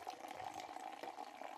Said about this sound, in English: So anyway, let's see if we can get the sound of the Sagardoa from the Basque region. And the effervescing here.